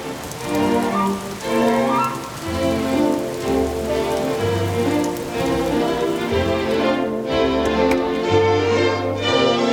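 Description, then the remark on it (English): Real steady rain, not a sound effect, falls outside on a Saturday, a dense, continuous patter that stays even and fairly loud throughout, with soft tonal sounds mixed underneath. No one speaks. “Can you hear that, everybody? That's real. That's not a sound effect.”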